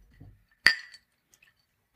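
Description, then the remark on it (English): A single bright, ringing clink of glass or dishware as dirty dishes are swept up and wine bottles top off glasses, fading over a fraction of a second, followed by a couple of faint small taps and a dull knock at the very end. “Meanwhile, dirty dishes were swept up, and wine bottles lifted themselves from the table to top off their glasses.”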